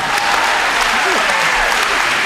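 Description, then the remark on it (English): An audience claps steadily, a dense, even wash of many hands that stays loud throughout, with a faint voice briefly audible underneath. “Because we want to applaud.”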